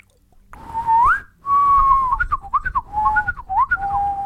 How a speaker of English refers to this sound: Did you hear that morning dove?